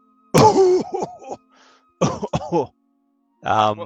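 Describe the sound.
A voice imitates a horrible, rough, hacking cough coming from underneath a bridge, in three harsh bursts: the first long and gravelly, then a pair of choppy hacks and a final raspy throat-clearing burst, loud.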